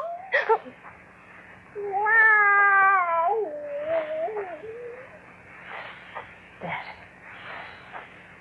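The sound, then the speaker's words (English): A cat lets out a long, wavering yowl lasting a few seconds, loud, followed by quieter rustling and faint murmuring sounds in a quiet house at night. “Cat.”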